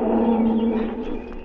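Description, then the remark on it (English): A lioness roars, a loud, deep, sustained groan that holds steady for a moment before easing off, with no other voices present. “The lion's wife. She come closer.”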